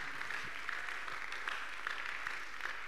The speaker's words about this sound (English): Those who are clapping, they are clapping well. They are clapping well.